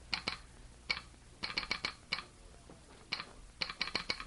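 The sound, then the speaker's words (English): A telegraph sounder clicks out a message from the Rockton operator, verifying that number 7 westbound is past Milltown, in uneven groups of sharp, bright taps, some in quick runs of three or four, separated by brief pauses, with no voices. “What clicking say, Kimsey? It's the Rockton operator, verifying that number 7 westbound is past Milltown.”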